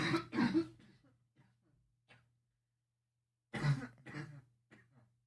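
Two separate bursts of harsh, wet coughing, the first near the start and a second after a few seconds of near silence, each a cluster of rough throaty hacks.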